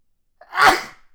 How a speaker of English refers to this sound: I got a sneeze coming.